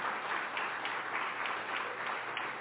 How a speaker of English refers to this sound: Yeah, y'all definitely should clap for that. Thank you.